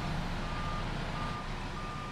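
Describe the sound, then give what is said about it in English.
Dense, rumbling noise at the construction site of a battery cell factory for Japanese manufacturer Envision AESC, on a former cotton field, with heavy machinery, cut through by a repeated high-pitched reversing beep that sounds in steady pulses over the low engine drone. No one speaks. “And so I was driving around the construction site in a massive pickup truck with Greg Robinson.”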